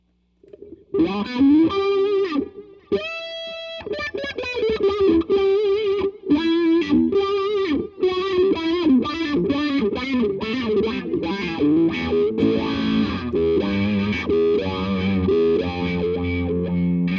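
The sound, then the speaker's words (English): A distorted electric guitar, switched to the neck pickup with a dirty tone on setting three, plays a busy, continuous riff with sustained notes and quick runs, its tone sweeping with a vocal, wah-like quality. The playing is loud throughout, with no talking. “Can you switch to the neck pickup dirty?”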